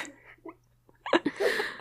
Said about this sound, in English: Well, she's got the puppy barks. Oh, so cute.